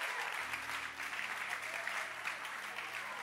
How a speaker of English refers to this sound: Clap your hands for the film stars. Beautiful boys.